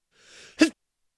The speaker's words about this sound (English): Sorry, I sneezed.